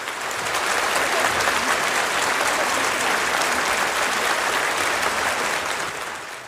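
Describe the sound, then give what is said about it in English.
Loud, sustained applause from a large audience, a dense wash of clapping that stays steady for several seconds before easing slightly at the end, given in response to the section on Taiwan in a speech to the Chinese leadership. “So for instance, you know, you can read a lot into the fact that when it got to the section on Taiwan, which used relatively aggressive language, although not going far beyond what she had said before, there was wild applause.”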